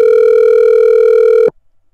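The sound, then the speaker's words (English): A loud, steady telephone dial tone hums continuously for about a second and a half as a phone call is placed, then cuts off abruptly into silence. No voices are heard. “Mike, I'm going to call Dave on the phone.”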